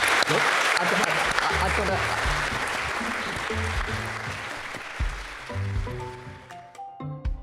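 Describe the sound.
An audience at an Intelligence Squared event for Sotheby's Book Week claps for Simon Callow and others in a dense, sustained round of applause that stays loud and steady for several seconds, then thins out toward the end with a few scattered claps and murmuring voices.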